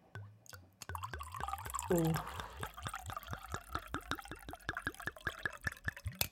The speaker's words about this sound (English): That was just the tequila. As it was pouring, I was thinking, that is a lot.